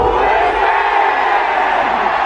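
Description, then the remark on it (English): A huge crowd at the O2 Arena screams and shouts together in a loud, sustained roar, voices blending into a dense, steady wall of cheering with a chant-like rise of "Who is it?" running through it. “O2 Arena all screaming, "Who is it?"”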